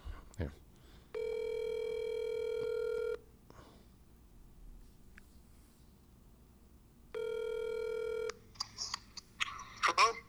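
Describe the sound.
A phone line rings out with two long, steady ringback tones separated by a few seconds of quiet, clear, followed by brief rustling and faint voices at the end.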